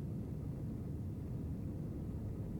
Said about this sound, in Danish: Lige om lidt skal flyde til at lette for jorden. Du må gerne sætte dig godt til rette og mærke, hvordan flyet accelererer.